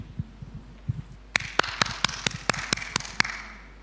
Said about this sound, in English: There's your percussion. What we do with our hands is to clap and bring applause and magnify God with our hands.